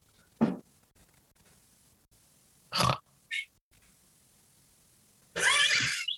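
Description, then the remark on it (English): A person makes loud, nasal pig-like honks and snorts in four separate bursts with quiet gaps between them. The final honk is the longest and harshest. “You honk like a pig.”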